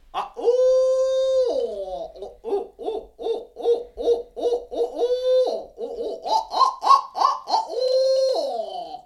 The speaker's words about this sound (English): Just that change from that typical note, okay, I'm hearing it, boom, they'll respond and gobble at that owl laughter is what they call it.